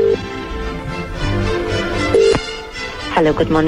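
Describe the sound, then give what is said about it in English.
A telephone call dialed to King Edward VII Hospital rings out with short, steady electronic tones, partly buried under a dense bed of background music and voices that swell toward the end. “So let's give this hospital a call.”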